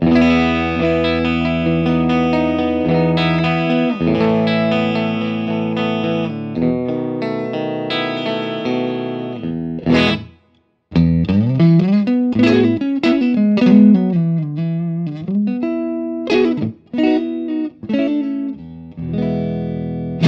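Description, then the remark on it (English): A clean electric guitar played through an Orange Rock Reverb 50 tube amp on the clean channel, EQ set straight up and down, plays sustained chords, pauses briefly, then moves into a run of single-note melodic lines with plucked accents, steady and fairly loud with no voices. “So let's start with my clean tone on an Orange Rock Reverb 50 EQ straight up and down on the clean channel.”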